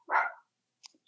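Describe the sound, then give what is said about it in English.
A single sharp dog bark rings out, followed by silence and a few faint scattered clicks and rustles. “And I remember, oh, sorry, I had a dog barking here.”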